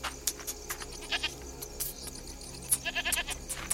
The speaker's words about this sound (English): The goat balks at crossing the threshold. She lowers her head and bleats, tensing to flee if the old man tries to grab her.